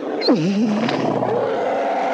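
The Rancor monster roar from Return of the Jedi, made by sound designer Ben Burtt from a recorded dachshund, opens with a high yelp that swoops down into a long, low, wavering growl, heard alone without any talking.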